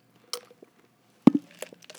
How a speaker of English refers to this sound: I'm going to take a sip of water before I switch over to sweet as well.